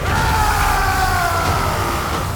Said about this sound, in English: He let out a warrior's yell.